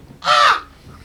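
A single harsh crow caw rings out, loud and raspy, lasting about a third of a second, as the pet bird Moaning returns after a whistle, fading into quiet background.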